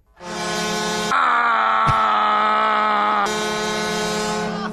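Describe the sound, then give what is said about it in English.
A voice imitates a hockey goal horn with one long, loud, steady blare lasting several seconds. The tone is buzzy and harmonic-rich, and its pitch rises briefly in the middle before settling back. “You know, like when you score a goal, yeah, you get the goal horn.”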